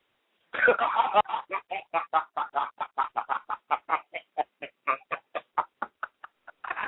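A chicken clucks in a rapid, steady series of short, sharp calls, starting with a longer burst and continuing evenly for several seconds, clear with no talking.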